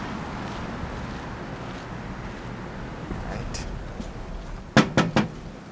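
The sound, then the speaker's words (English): Three quick, firm knocks on a front door land near the end, following several seconds of steady outdoor background noise with a faint breezy rumble. “Should I knock louder?”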